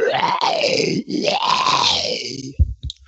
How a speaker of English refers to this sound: You guys also begin to hear noises, which definitely sound like growls and whispers and moans and things like that.